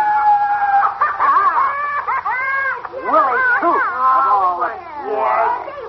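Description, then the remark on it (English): A man imitates a wolf howl with long, wavering, sliding cries, loud, running almost nonstop for several seconds, with a few brief spoken words slipped in. “Thinks he's a big wolf.”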